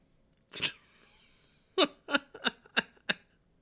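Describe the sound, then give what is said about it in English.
A sharp sneeze rings out fairly loud, followed after a short pause by a quick run of five or six smaller, explosive sneezes in a rough rhythm. “God bless you, Lance Henriksen.”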